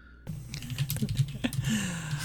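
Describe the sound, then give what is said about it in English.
Rapid tapping on a computer keyboard: a dense, uneven run of key clicks lasting about two seconds, over a steady low hum, with no voices. “I saw you typing it out, and I'm like, the man with the Iron Mask?”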